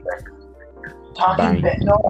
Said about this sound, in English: Who has the echo? Whoa! Is that me?